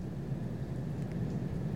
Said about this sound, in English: Yeah. That's the fucking rain on my roof. Holy shit. That's how hard it's raining right now. Wow. It's been picking up my microphone this whole time.